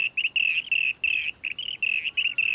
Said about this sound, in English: And there's another one. It's a rainbow bee-eater. They are such beautiful birds with their bright blue, green and orange feathers.